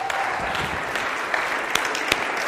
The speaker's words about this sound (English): But thank you so much. We can applaud them. That'd be great.